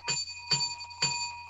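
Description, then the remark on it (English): A bell rings three times in an even, quick rhythm, each bright metallic strike leaving a sustained ringing tone. Fairly quiet and heard alone, with no talking. “I can stop when the bell rings.”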